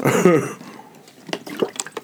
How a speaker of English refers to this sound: But this time I'm only drinking Icelandic Glacial. Yeah, natural spring water from Iceland. That's what they say.